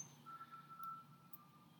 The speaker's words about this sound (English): There's an ice cream truck. I don't believe they have those. And there's an ice cream truck. So there's an ice cream truck out there.